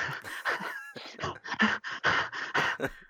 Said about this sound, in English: I sound like a dog then, panting.